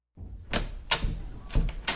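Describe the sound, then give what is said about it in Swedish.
A door opens as someone comes in, with a low rumble followed by four sharp clacks and knocks of the latch and handle, spaced unevenly over two seconds, with no voices. “Och då är det, ja, så du kommer in genom dörren.”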